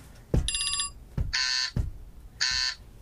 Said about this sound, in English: So, we're going to test our buzzers.